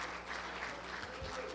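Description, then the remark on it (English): An audience claps steadily for the children, a dense wash of many hands applauding together at a constant level, with a hint of voices mixed into the crowd noise. “Give them another big hand clap.”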